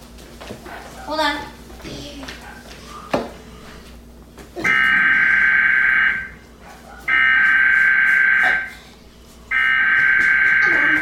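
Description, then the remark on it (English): A harsh, steady emergency broadcast attention tone interrupting TV programming for a national emergency, an emergency action notification, blares in three long bursts of about a second and a half each, separated by short gaps, after a few seconds of muffled voice and background sound. “Emergency action notification.”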